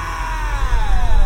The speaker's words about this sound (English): Right, deserted houses. Guy screaming nonsensically.